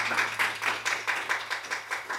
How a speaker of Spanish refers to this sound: Vamos a dar palmas al Señor también.